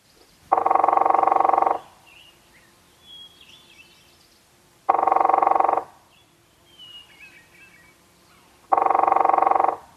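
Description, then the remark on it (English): A northern flicker drumming to declare its territory, in three loud, rapid rolls, each lasting about a second with several seconds of pause between them. Faint bird chirps fill the quieter gaps. “This is a northern flicker drumming.”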